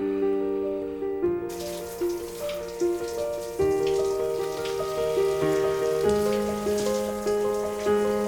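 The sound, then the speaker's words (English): Shower water runs in a steady, even hiss that starts after about a second and continues throughout, with sustained musical tones shifting pitch underneath, as someone in the shower uses a water-activated gel cleanser. “In the shower, I use a water-activated gel cleanser.”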